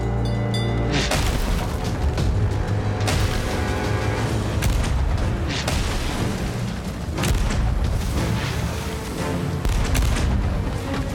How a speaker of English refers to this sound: Yeah, the cannon fire is pretty cool.